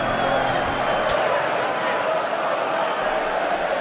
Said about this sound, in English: So we're just going to fade out the sound, everyone, and we're going to bring in the sound of the crowd. Let's take a step back in time and cast your ears back to 1996.